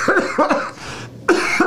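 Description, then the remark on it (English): A harsh coughing fit: several rapid, raspy coughs in quick succession, a short pause, then another burst of hacking coughs. “Oh, I got to get a cough drop.”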